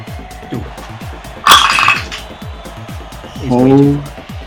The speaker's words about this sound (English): Guys, I rolled two dice at the same time because I'm an economical Dungeons & Dragons player.